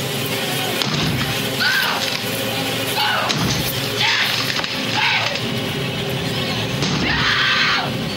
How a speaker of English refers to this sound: Okay, scream number three. This one might be a little easier. If you listen, you might have a clue in there. Okay, here we go.